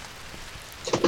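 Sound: rain falling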